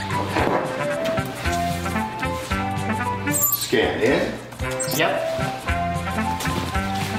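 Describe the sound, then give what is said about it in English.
A busy, loud musical track from a scene where clothes are being scanned, featuring a slide whistle swooping upward midway and short, repeated car-horn beeps, with a few brief spoken words over the music. “For the song when they're scanning the clothes, put it in here because it has both slide whistle and car horn beep beeps in it.”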